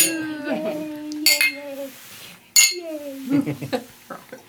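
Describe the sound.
Two bright glass clinks ring out a little over a second apart, crisp, as glasses of a lemon drink are raised, surrounded by voices of people chatting and calling out during a toast.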